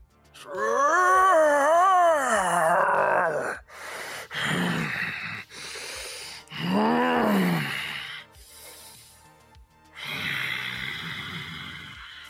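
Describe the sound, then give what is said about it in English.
A voice imitates a monster howling: a long, wavering, pitch-bending wail followed by several shorter guttural growls and roars, loud, with brief pauses between bursts. “Straight into his rib cage. And he lets out a howl.”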